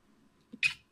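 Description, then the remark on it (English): A single sharp sneeze bursts out after a brief, soft intake of breath, hissy and bright, lasting only a moment before quiet returns; no one speaks. “Bless you. Thank you.”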